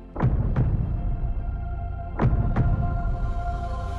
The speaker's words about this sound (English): So what does her heartbeat sound like?